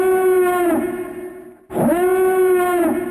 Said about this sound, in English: So Tech Omega and the others rush across the outdoor platform, making their way to the next building, and we hear that oh-so-familiar alarm again.